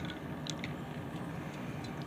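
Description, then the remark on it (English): Mountain Dew Frostbite Dew soda being poured, a steady, even fizzing rush with a few small bubbly pops and crackles scattered through it, and no one talking. “Continue to pour this shit.”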